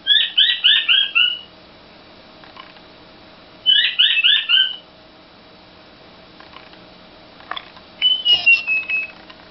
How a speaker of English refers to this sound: The female has black and white stripes on her face and throat. The birds can become quite tame and can live several years. Button quails make a lot of different noises. This is what a button quail sounds like.